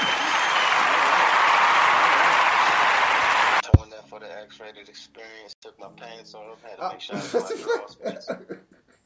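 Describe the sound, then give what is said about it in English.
Loud, dense applause with many hands clapping fills the first few seconds, then stops abruptly and gives way to people talking. “Clap it up.”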